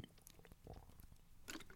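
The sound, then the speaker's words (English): Someone chugging water close to the microphone: a quick run of wet gulps and swallows with soft clicks in an uneven rhythm, fairly loud, with no talking. “Just chug that water there, right up to the microphone.”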